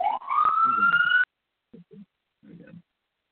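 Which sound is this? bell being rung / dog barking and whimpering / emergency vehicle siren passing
emergency vehicle siren passing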